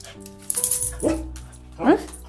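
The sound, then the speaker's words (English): An anxious female dog lets out two short, high-pitched barks about a second apart, fairly loud, with a faint steady hum underneath. “You got something to say? You got something to say, Franks?”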